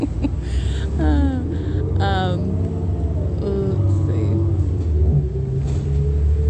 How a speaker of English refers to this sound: It's 9:25 p.m. I'm getting off the bus right now.